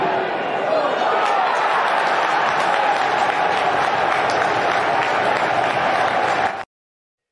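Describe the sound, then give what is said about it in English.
A large crowd at an end-of-season English lower-league football match claps and cheers steadily after a goal by Jay Rich Begolo, a wave clap: a dense, continuous wash of applause with indistinct voices mixed in, then it cuts off abruptly. “Proper lower league English football response, like a bit of a wave clap. You can hear it coming through, mate.”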